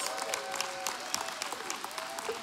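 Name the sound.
audience clapping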